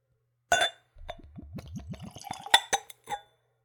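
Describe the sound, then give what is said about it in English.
Room-temperature, undiluted whiskey glugs in quick, rising pulses as it's poured from a skull-shaped bottle into a clean, tulip-shaped Glencairn nosing glass, framed by a sharp clink at the start and a few light glass taps at the end. Clear, with no talking. “So let's go for a pour.”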